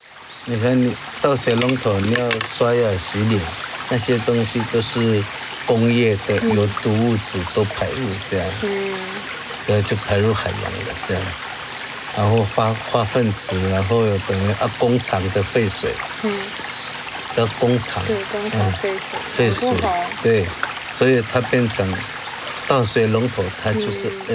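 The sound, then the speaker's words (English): Water gushes steadily from a detached pipe on the side of a mountain in a continuous, splashing pour that runs the whole time, clearing out the pipe's insides, while people talk over it. “Sometimes he'd motion for us to wait, and then he'd scale a small cliff himself and adjust the pipes, pulling leaves or debris out of them or detaching them to let water flow and clear out their insides.”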